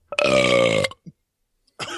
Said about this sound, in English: Great burp.